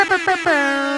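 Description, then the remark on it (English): A loud air horn blasts in three quick bursts, the last one held as a long, steady, brassy tone that slightly drops in pitch, a Hot 97 radio station sound drop. “Oh, one more time for the Hot 97 drop.”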